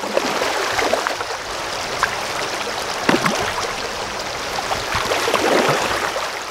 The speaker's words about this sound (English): And here I am standing next to him. And then to top it all off, we're both standing in this river as salmon start jumping up all around us.